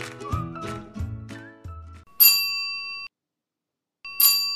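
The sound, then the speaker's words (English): A bell is struck twice, loud, each strike ringing out with bright sustained tones, separated by a pause of silence. A short melodic passage plays just before. “But for those of you who don't know, that is called a bell.”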